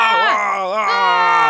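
Two people scream together, loud, their overlapping voices wavering and bending in pitch in one sustained outburst with no words, as a stone cover is pushed off and the room fills with bright light.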